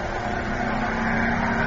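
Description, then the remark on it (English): A race car engine roars loudly and steadily as the car leaves, its revving drone holding strong and swelling slightly over a couple of seconds, with no voices. “Now get yourself and your car out of here in a hurry.”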